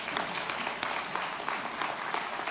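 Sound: round of applause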